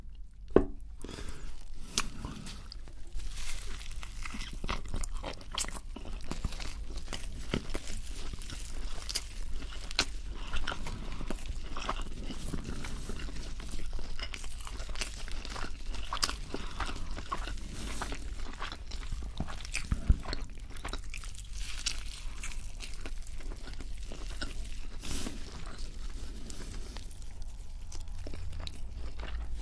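Wet biting and chewing of a Burger King burger, with repeated crunchy bites and squishy mouth sounds continuing steadily for the whole stretch, no talking.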